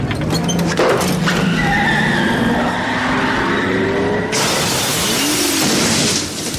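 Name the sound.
car engine running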